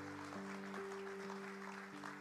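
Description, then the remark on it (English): Steady applause from an audience, a dense wash of clapping that holds at an even level throughout, with a low sustained hum running underneath. “we'll give another round of applause for Bob.”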